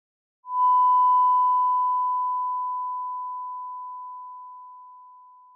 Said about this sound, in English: Let me give you an example. That was a 1,000 Hz tone, a frequency commonly tested. If I gradually decrease that tone, at some point, it will fall outside of your hearing range.